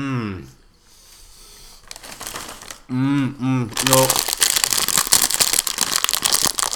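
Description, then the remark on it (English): A sweets packet crinkles and crackles in a dense, continuous rustle that grows louder and busier over several seconds, broken briefly by a short spoken word. “So it's going to be so loud, and all you're going to hear is the crunching and crackling.”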